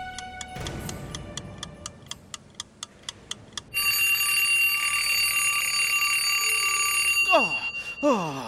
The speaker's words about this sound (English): Oh, it's 5 to 5 p.m. I slept past my first few alarms, Ruff Ruff.